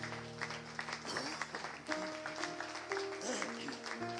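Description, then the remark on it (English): An audience claps their hands for people coming down to the front of the building, a dense, steady wash of applause that keeps going for several seconds, with sustained low tones humming underneath. “Give them a hand clap while they come.”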